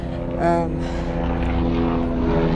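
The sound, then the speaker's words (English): A propeller airplane drones steadily overhead, its engine hum loud and continuous with a layered, buzzing tone that swells slightly early on before holding level. “airplane.”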